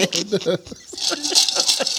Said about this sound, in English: Why my ice always make me much noise?